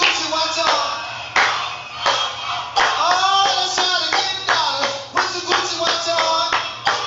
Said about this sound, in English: Clap for me. Hey, clap your head, baby. Clap your head.